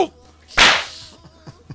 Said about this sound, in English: Just got the shit slapped out of me by Will Smith.